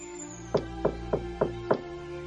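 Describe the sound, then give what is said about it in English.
Five firm knocks on a wooden cabin door by an old man, evenly spaced about a third of a second apart, distinct over a faint steady background hum. No voices. “He gets to the cabin, and he knocks.”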